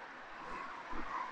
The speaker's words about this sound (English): You know, I'm just strolling here. Yeah, more traffic coming.